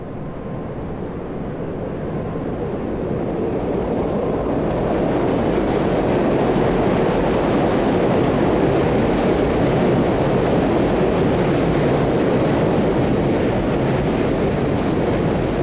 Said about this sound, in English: Subway sounds so cool. It's intense and loud and shit.